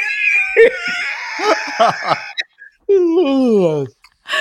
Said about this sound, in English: You heard that yawn, y'all? Y'all heard that yawn? That's good.